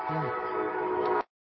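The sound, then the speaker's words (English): A single bright, bell-like tone, rung to mark the end of a discussion topic, rings on its own for just over a second. It holds steady and loud before cutting off abruptly into silence. “Well, that bell means that we're done talking about the fourth mother box.”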